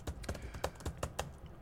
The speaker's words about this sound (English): They can hear me typing. It's obvious I'm typing.